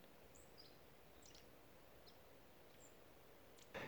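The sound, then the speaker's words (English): Faint birds chirp sporadically in a forest, a few short high calls scattered over a quiet, steady outdoor hush, with a brief rustle near the end. No one speaks. “But what science discounts, what it ignores, what it leaves off the table is the feeling of sitting here in this forest, looking at the life around me, and listening to the birds, and just being absolutely astonished that any of it can exist.”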